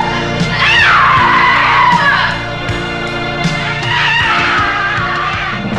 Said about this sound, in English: She's spinning around the room, flailing, screaming to herself